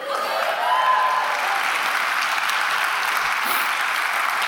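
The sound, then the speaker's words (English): An audience applauds steadily, a dense, even wash of clapping that holds at a fairly loud level for several seconds without fading. “Well, I thought there'd be more laughter than applause, but I'll go with the applause.”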